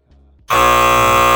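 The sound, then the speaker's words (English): A loud, harsh electronic buzzer blares suddenly after a brief low hum and holds steady at full volume, a dense, rasping tone with no speech. “That's all buzzer.”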